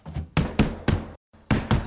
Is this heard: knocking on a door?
yes